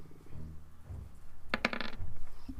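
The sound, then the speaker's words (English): Dice rolled for damage in a tabletop game clatter briefly on a hard tabletop, a quick burst of sharp clicks over a low, muffled background. “For, wow, fuck you too, dice.”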